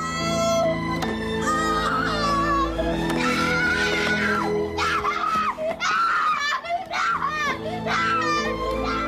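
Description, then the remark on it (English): A boy screams and wails loudly in a tantrum after throwing himself out of his wheelchair onto the ground, with long rising and falling cries that barely pause for breath over several seconds. “Like, he throws himself out of his wheelchair and is on the ground screaming his lungs out.”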